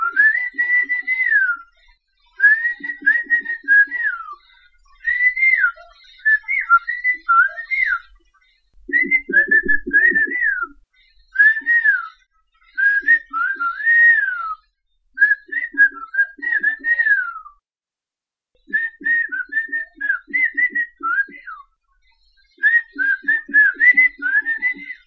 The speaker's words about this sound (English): Whistled languages exist all around the world. They help people communicate over long distances, far longer than you can reach with words. A good whistler in the right conditions can talk to someone up to 3 miles away.